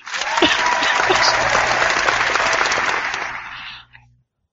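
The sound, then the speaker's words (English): A burst of applause from a small group, dense steady clapping that holds for nearly four seconds before quickly fading out to silence. “I think that in itself gets its own applause.”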